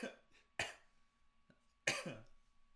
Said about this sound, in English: I do always apologize for coughing into the mic.